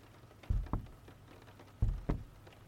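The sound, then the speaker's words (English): A few soft, irregular taps of light rain against a window, spaced out over a quiet, low background hum with no one speaking. “And as I'm walking through the store, looking at all of the shelves, picking up books and putting them down, there's a light rain that's tapping against the window outside.”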